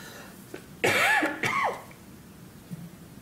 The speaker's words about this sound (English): I'm sorry, I'm gonna start coughing.